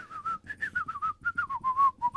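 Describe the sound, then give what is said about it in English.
Someone whistles a lively movie theme song, a quick string of bright notes rising and falling in a steady rhythm for a couple of seconds, with no talking over it. “I think you should lay next to my bed at night and whistle that.”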